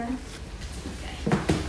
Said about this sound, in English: I open the back door.